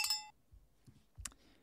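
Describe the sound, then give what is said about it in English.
A single bright, high-pitched bell ding, rung to celebrate a listener's St. Louis 10K run, rings out and fades within a fraction of a second, followed by soft low thumps and one more short, sharp metallic tick. “Where's that bell? Let's get a bell for that one.”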